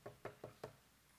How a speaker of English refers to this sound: And I want you just to right there, kind of picture, if you would, Jesus knocking.